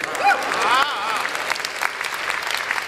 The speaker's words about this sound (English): Wonder Woman spent her entire life, y'all can clap.